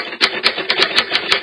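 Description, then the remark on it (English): A typewriter sound effect played from a soundboard: rapid keystrokes clatter in a steady, slightly uneven rhythm, about seven sharp clacks in a second and a half, fairly loud with no voices. “Why is it still typing?”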